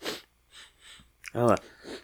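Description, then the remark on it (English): Several short, breathy sniffs of an object, taken in quick succession, followed by a brief voiced exclamation and one more soft inhale. “I'll give it a sniff.”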